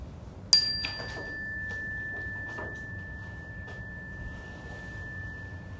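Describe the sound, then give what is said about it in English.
A single bright chime, rung for a yoga breathing exercise, strikes once and its clear, steady ring hangs on, slowly fading over several seconds above faint background rustling. “Only raise your hand when you don't hear the sound of the chime anymore.”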